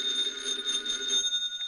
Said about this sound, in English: Meanwhile, at a nearby FBI field office, Special Agent Taylor is returning from the file room when his phone rings.